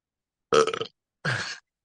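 Two short, gurgly burps in quick succession, each lasting under half a second with a brief pause between, fairly loud with no talking around them.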